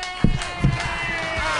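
An audience claps in a steady, dense patter, with a couple of sharper claps standing out early on, alongside a faint steady hum and no one speaking.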